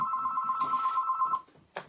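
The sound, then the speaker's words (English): A phone rings with a steady, high electronic trill lasting just over a second, then cuts off, followed by a short rustling burst. No one speaks. “Call me back later, I'm busy.”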